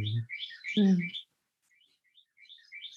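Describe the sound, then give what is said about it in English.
A bird chirps in quick, repeated high tweets throughout, clearer at first and softer toward the end, with a couple of brief human murmurs near the start. “And the bird agrees with me.”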